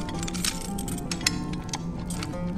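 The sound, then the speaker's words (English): Keys jingle and clink in a quick, irregular series of bright metallic taps as someone unlocks, fairly soft, with a faint background hum and no voices. “Come on, I have the keys. Let's get you down.”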